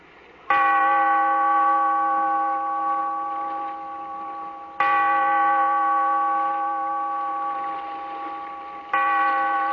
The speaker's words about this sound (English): Bellkeeper, toll the bell, so that all may know we are gathered again in the weird circle.